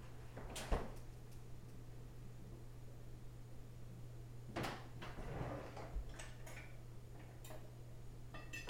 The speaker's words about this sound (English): He has taken a knife from a drawer and placed it on the plate.